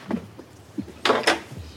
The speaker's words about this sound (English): Excuse the creaking door.